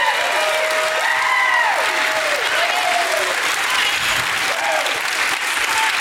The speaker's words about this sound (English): Give God a hand clap and a shout of praise. Somebody stand with me and give God a hand clap and a shout of praise.